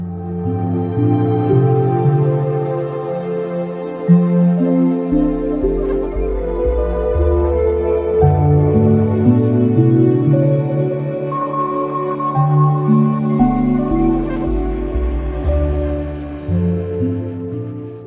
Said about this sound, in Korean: 심장 박동이 가는 이런 소리 같은 게 거기다가 또 지직지직 이런 소리도 작게 계속 밑에 깔려 있잖아요. 이런 소리들이 그냥 들으면 흘려 들을 수 있는데 가만히 듣고 있으면 계속 귀에 거슬리거든요. 이런 소리들이.